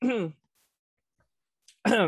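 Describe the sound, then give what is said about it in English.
Two short, voiced throat-clearing sounds, fairly loud, separated by a quiet pause of about a second and a half. “I had to like clear my throat.”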